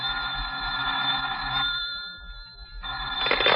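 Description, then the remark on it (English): A telephone bell rings in two bursts with a short gap between, a bright, jangling metallic trill with sustained high tones. No voices are heard. “You're still slouched there half an hour later when the telephone rings.”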